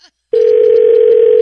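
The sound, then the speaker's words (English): After a phone is hung up, a steady telephone dial tone cuts in abruptly following a brief silence, holding one unbroken, fairly loud hum through the rest of the moment with no voices over it. “Hang up the phone.”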